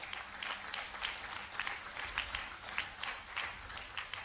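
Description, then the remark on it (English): Audience applause at an Alabaster International Ministry worship service, welcoming a visiting princess of the kingdom of Swaziland: a steady wash of many hands clapping at once with scattered sharper claps, fairly quiet, continuing throughout with no speech over it. “Are you clapping for this beautiful?”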